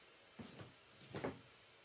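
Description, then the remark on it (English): Two short bursts of quick, light taps on a kid's small wooden chair, fairly quiet, with a brief pause between the clusters and no talking. “Kid's little wooden chair. I heard from a little bird that tapping on wooden objects is the best trigger.”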